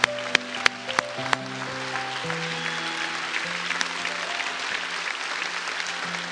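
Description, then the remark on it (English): A large church audience breaks into sustained applause, with sharp opening claps and steady organ-like tones sounding underneath throughout. “Clap them off, Rock Church.”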